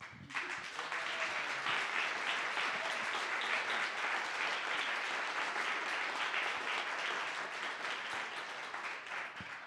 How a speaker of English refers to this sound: That clap is for you for being brave and sharing, and it's a clap for Jesus and the difference that he makes.